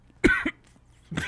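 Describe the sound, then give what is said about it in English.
A sharp cough bursts out in two quick parts, followed by a short pause and then the start of another cough-like burst. “Oh, wow, and a cough comes.”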